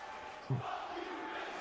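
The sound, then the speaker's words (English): A large wrestling arena crowd roars loudly and continuously during a match, a dense wash of cheering and shouting with one sharp yell bursting out near the start. “Maybe that's why, and I think that's another reason why Eddie hated this match, was because it was the crowd's just loud, but not really for them.”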